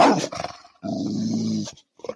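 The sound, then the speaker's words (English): A dog lets out a sustained, throaty growl lasting about a second, preceded by a short rough vocal burst and followed by a brief snort, fairly loud with no talking. “Yeah, he gets the real growl.”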